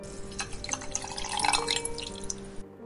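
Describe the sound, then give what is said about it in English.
Milk from a carton out of the fridge pours steadily into a tall glass in a kitchen with the light off, a continuous splashing gurgle with small bright drips and clinks that rises slightly in pitch and then stops abruptly after a few seconds. “She took a tall glass from the cupboard above the counter and poured herself some milk.”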